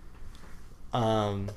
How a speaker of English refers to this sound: The Cubs-Cards game has ended the sixth inning. I think that's why your phone vibrated.